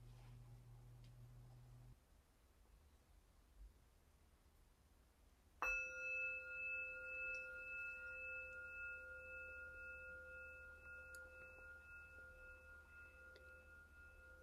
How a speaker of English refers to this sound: And once everyone is settled and the incense is offered, and the priest steps back, or the head person steps back to do their bows and approach their seat, then we hear the three bells, which we'll hear now, to invite us for our initial sitting.